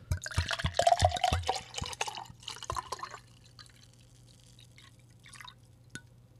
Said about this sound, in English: And you know, I just realized I'm out after that last sip. So, Mama's got another bottle. Let's pour it to the top.